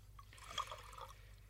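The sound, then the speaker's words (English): Vintage wine is poured briefly into a glass, a soft gurgling trickle with a few bubbly glugs that rise and fade within a second or so, quiet and with no talking. “Now, quiet everyone while I pour the 47.”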